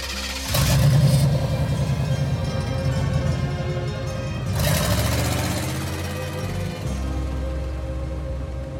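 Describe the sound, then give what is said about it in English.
A cargo truck engine drones steadily while driving, its low rumble swelling twice as it revs up, with no voices present. “I'm still in the cargo truck. This morning, the truck slowed down to stop outside of what sounds like one giant machine.”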